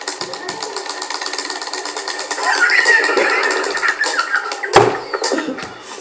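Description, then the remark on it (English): Rapid, repeated clashing impacts from a fighting game match, FnJimmy playing Hulk and hammering forward and fierce against an opponent hammering back and fierce: about 12 throw-tech breaks firing in a dense rattling stream that grows louder midway, with one sharper hit near the end. “Now listen to the tech throwing.”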